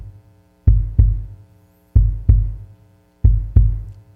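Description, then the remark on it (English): A steady heartbeat thumps in clear lub-dub pairs, three double beats evenly spaced, deep, with a faint low hum underneath and no talking. “on Friday, Jesus' heartbeat went from this to this.”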